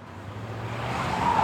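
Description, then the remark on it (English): A car engine rumbles with steady road noise, growing gradually louder, and a faint tire whine rises near the end as the car turns onto the driver's home street after dark. “As I turned onto my street, I noticed a long line of cars going very slowly.”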